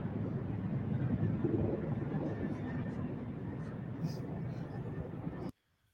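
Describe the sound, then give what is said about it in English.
NYPD police helicopters pass overhead in formation, the last one out of formation, as a tribute to a fallen police officer at his funeral: a loud, steady low rumble with a churning, wind-buffeted texture that fills the air, then cuts off abruptly near the end. “as the helicopters flew over”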